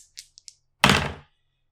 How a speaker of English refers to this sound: your dice that you got me for my birthday rolled a 1. Damn it.